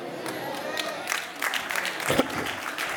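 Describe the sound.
An audience claps steadily for a few seconds, a dense, even patter of many hands, with scattered voices and a brief louder burst near the end.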